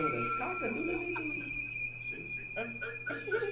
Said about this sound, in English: Oh, I wonder who's calling you. Oh, the chicken. No, it's a cock.